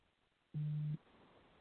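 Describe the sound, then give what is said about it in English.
A single short phone beep, a steady low electronic tone lasting under half a second, rings out clearly and loudly over a faint background hiss, with no talking. “Stupid phone.”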